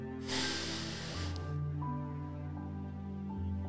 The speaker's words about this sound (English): Breathe again. I was breathing out, but I don't want to do that to your ear, okay?